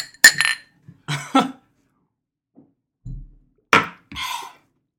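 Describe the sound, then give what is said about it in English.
Glasses clink together in a toast, a few bright chinks spaced over several seconds, mixed with soft thuds of glasses being handled, with no one talking. “Well, cheers, everyone.”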